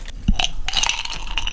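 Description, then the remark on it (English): Ice cubes clatter and clink into glasses, put in before building Bushel and Barrel cocktails, in a few quick, irregular bursts, with bright ringing tones over a crunchy rattle, fairly loud and with no one speaking. “I'm going to put ice in our glasses and then we'll go.”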